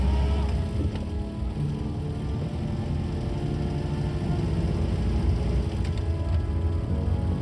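A van's engine starts back up and drones steadily as the van drives down a rough, unstable road, a continuous low rumble with occasional knocks and rattles from the bumps. No one speaks.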